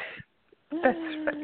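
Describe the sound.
A thin, phone-quality voice breaks off abruptly into a half-second of dead silence, then returns choppy and garbled, like a call connection dropping out and reconnecting.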